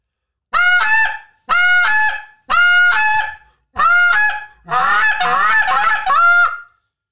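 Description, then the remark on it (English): A goose call, blown to call in geese, honks loudly: four separate drawn-out honks followed by a fast, rapid string of clucking honks, high and nasal, with no voices. “Ten Minute Tuesday; Goose Calling”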